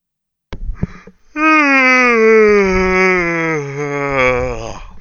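A loud, drawn-out yawn: a breathy intake followed by a long voiced groan that slides slowly downward in pitch for several seconds before trailing off, with no talking.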